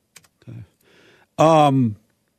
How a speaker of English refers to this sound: I'm typing a note to her.